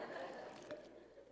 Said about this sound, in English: Oh man, let me take a sip of this water real quick.